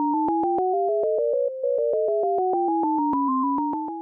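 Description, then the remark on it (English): The chromatic illusion: each ear gets an alternation of electronic beeps. A rapid, steady stream alternating between high and low pitches; the high tones drift downward and the low ones upward until they meet midway, then spread apart again. “But together you're hearing all of the high beeps as a unit on one side, probably on the right, and all the low beeps on the other side.”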